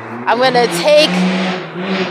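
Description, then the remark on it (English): Someone's car engine revs hard outdoors, pushed to its limit, its droning pitch climbing and dipping over about two seconds, with a voice talking over the roar. “No, seriously, like, yeah, you hear that? That is somebody's car, and they are pushing it to the limit.”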